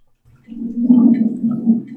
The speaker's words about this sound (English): You easily just put your fingers on the door... And the door just slides open with a. the hinges are distinctly not well oiled whatsoever.